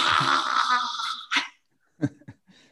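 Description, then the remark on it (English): A person does a long, forceful, raspy exhale with the tongue stuck out, like a lion's roar, in the yoga exercise called lion face, loud, followed by a few short, sharp breathy bursts and brief quiet gaps. “And then you stick out your tongue and you go, ah! Or you can growl like a lion.”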